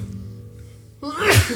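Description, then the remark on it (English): A single sharp sneeze bursts out after a moment of quiet room tone, a short harsh blast with a breathy trailing edge. “Bless you. We'll wait.”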